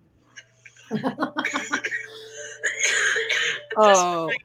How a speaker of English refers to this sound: I can cough. That cough sounded just as real as that. They're so fake.